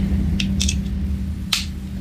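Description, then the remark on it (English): An AirPod charging case snaps shut into place with small, sharp clicks: a quick cluster of two or three, then a single firmer click a moment later, over a low, steady background hum. “An AirPod charger clicking into place.”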